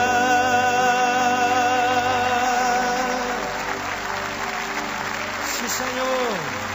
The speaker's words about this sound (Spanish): Dévele fuerte ese aplauso a Él.